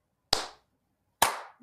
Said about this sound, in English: Okay, on the count of three, just clap your hands. One, two.